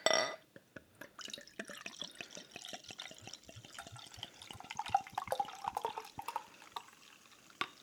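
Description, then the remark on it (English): Beer glugs and splashes as it's poured into two glasses, a steady stream of bubbly, crackling liquid sounds lasting several seconds with no talking. “Guess who did a good pour for once? Oh, look at that. We both got good pours.”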